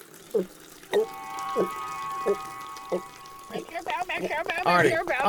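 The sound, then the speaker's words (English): Coffee from a spigot falls in a handful of distinct drips, about one every half-second, with a faint steady hum behind. Voices and busy sounds crowd in near the end. “Look, just put your mouth under the spigot and pour it directly in.”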